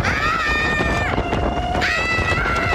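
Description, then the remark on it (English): A loud, steady roar of jet blast from a plane taking off from St. Martin's Airport in the Caribbean, with a woman standing behind it, rushing like strong wind, with high whining tones that dip and then rise again over the constant noise. “The lady is standing behind a plane as it takes off from St. Martin's Airport in the Caribbean.”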